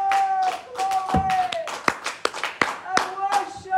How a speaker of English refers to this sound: Let's clap to the Lord this morning. Praise God.